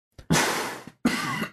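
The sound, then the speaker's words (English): Two loud, harsh coughs, each a raspy burst lasting about half a second with a brief pause between, and another cough just starting at the end. No talking. “You wanted a cough button so bad right then.”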